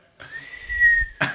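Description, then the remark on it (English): A person whistles in imitation of a steam train's whistle: one steady, fairly loud high note held for about a second, then cut off by a short breathy burst. “Here comes the steam train.”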